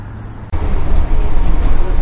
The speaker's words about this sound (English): Here's my bus.